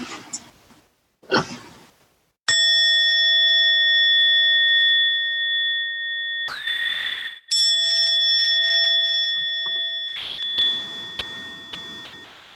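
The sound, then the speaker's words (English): A bell is struck several times, each strike ringing out with a long, shimmering resonance that sustains loudly between hits. No one speaks. “I have a lot of gratitude for the ringing of that bell there. Still going.”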